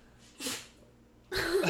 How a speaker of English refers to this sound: God bless you, …. Sneezed.